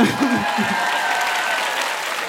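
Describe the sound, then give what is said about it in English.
An audience applauds in a loud, dense wash of many hands clapping at once, holding steady throughout, with a brief murmur of voice near the start. “I also love applause.”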